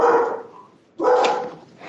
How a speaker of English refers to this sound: Don't let your dog answer for you, sir.